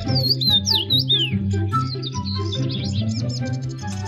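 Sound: small birds chirping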